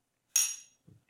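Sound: glasses clinking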